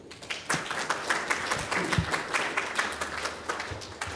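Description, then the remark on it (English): A crowd applauds the scholars and speakers of a session steadily, many hands clapping in a dense, continuous patter at moderate loudness with no voices on top. “Let's give a round of applause to all our scholars and speakers who came from all over the globe, essentially.”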